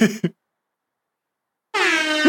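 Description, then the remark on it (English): A loud air horn sound effect, played by pressing a button, blares in a short burst, falls silent for over a second, then blasts again in a long sustained honk with dense stacked harmonics. “I want to hit the wrap air horn button again, but I don't want to overuse it.”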